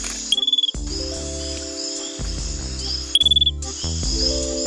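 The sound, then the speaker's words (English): A glass frog calls in two quick bursts of rapid, high, electronic-sounding peeps, each train lasting under half a second, set against steady background music. “The glass frog's call is a rapid series of short peeps and sounds kind of like the noise an electronic device might make to let you know its battery is almost dead.”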